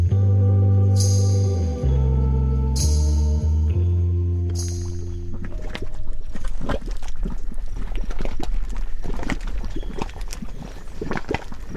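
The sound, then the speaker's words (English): Thick mud bubbling and plopping in a volcanic mud pot in Yellowstone National Park's geothermally active landscape, starting with a few deep, resonant gloops and then breaking into a busy, irregular stream of wet pops and splutters, with no voices. “We leave you this week with some mud cauldron bubbles.”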